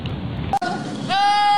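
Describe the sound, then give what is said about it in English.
A goat lets out a loud, sustained bleat near the end, following a burst of rough, rain-like background noise and a brief sharp break. “That was one good goat.”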